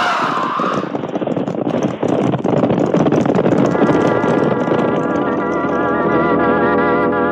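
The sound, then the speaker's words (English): A cattle stampede thunders in a dense, continuous rumble of pounding hooves that stays loud throughout, with a steady droning tone joining in partway through, as someone shoots at the cattle and turns them around. No one speaks. “Somebody's down there with the cattle, shooting at them, turning them around.”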